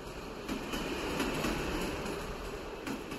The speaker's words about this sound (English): The train journey to Oslo was long.